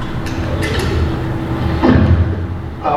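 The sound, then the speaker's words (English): A car's power door locks engage with a brief mechanical clunk, preceded by a few faint clicks, all over a steady low interior rumble. No one speaks. “Power door locks. Standard, of course.”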